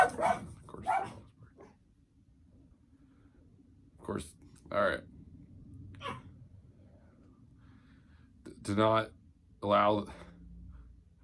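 A dog barks in short, sharp bursts, a few at the start, then scattered single and paired barks, over a steady low background hum.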